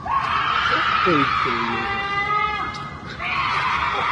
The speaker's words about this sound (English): Anyway, if you guys get a chance to listen, go listen to what a mountain lion sounds like when it's screaming, and it's truly disturbing. Or I could put it right here.